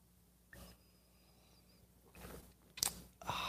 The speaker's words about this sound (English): I like coffee. I like my coffee black. Stop it. I like my coffee black. Stop it. Sip.